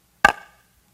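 A single sharp strike, like a hammer blow on wood or metal, with a brief ringing decay that fades within a fraction of a second. Nothing else is heard around it.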